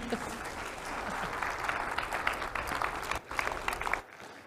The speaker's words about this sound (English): So let's give my wife an applause.